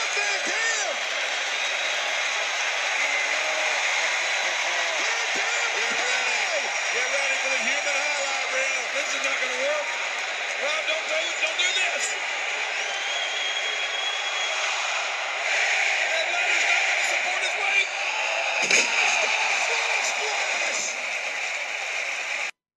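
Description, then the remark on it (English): A large wrestling arena crowd roars and cheers loudly and continuously as RVD hits a big move on Christian from about 20-something feet, a dense wall of voices that stays at full intensity throughout with only small swells and dips. “And it was the first time that you're like, okay, we're going next level here, because the crowd that we already established loves the crap out of RVD. And boy, did they pop for this.”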